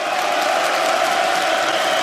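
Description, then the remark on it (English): A dense wash of crowd cheering and applause for an announced winner, loud and steady throughout, with no pauses or individual voices standing out. “Give it up. Clap for him. He needs to hear these cheers.”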